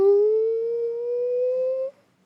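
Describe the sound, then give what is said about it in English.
A single voiced wail that slides slowly upward in pitch for about two seconds, like someone imitating a siren, fairly loud, then cutting off abruptly. “I would probably be a siren.”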